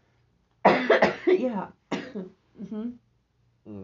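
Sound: coughing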